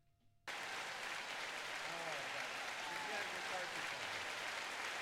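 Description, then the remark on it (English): Sudden loud applause for a guest on the Jim and Joe Show bursts in after a brief quiet moment and continues steadily as a dense wash of clapping from a crowd, with faint voices mixed underneath. “Round of applause.”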